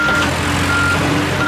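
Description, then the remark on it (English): A digger's reversing alarm beeps at a steady mid-high pitch, two long tones and the start of a third, over a continuous low diesel engine rumble, as the road is dug up to fix a broken underground water pipe. “George likes diggers.”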